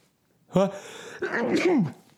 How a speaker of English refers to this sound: I'm sneezing into my elbow.